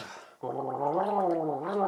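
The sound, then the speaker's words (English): Someone gargles liquid, a steady, bubbling throaty gurgle that starts after a brief rustle and holds for over a second, then swallows. “He swallows.”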